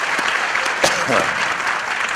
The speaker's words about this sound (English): we are here again live at the Northeast Conference on Science and Skepticism. Give everyone a home round of applause.